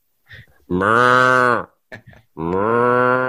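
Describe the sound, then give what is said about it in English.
A person imitates a cow mooing with two long, loud, drawn-out moos, separated by a brief burst of vocal sounds. “We do insert a sound effect of a cow mooing in post,”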